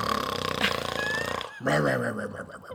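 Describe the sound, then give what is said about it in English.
A voice imitates snoring while pretending to sleep: a long, rasping, buzzy inhale, a brief pause, then a wavering, gurgly snore-like exhale, loud and theatrical. “He's instantly asleep and snoring.”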